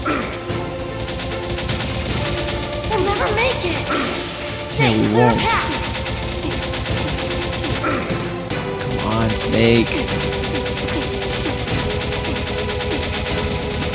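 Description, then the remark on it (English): Dense video game gunfire crackles and bursts continuously under loud background music, with sharp impacts and crashes scattered throughout while characters shout dialogue over the chaos. “There's just too many people shooting at you at once.”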